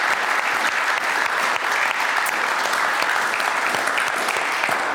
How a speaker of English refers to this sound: Can we give these ladies a massive round of applause?